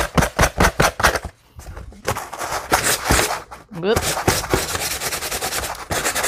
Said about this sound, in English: All right, and see how brittle the paper is. It's just doing that. Sanding block, you're up. Let's do this.